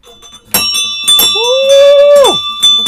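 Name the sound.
ship's bell being rung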